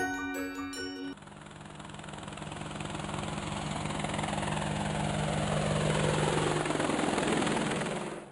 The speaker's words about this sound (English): On Thursday, May 24, 1990, Dorothy Snook was busy at work in the kitchen on her farm when she heard the sound of helicopters approaching. She looked out of the window and saw television news helicopters filming her property.